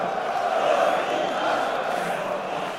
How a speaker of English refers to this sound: You've invoked the Jabberwash. The crowd slowly starts chanting Jabberwash.